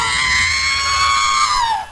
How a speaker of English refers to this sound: I'll edit in the sound of an astromech droid screaming so you don't have to listen to me do the sound of an astromech screaming with my voice, which would have been embarrassing for you, I promise.